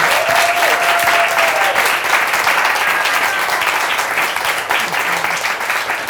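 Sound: audience round of applause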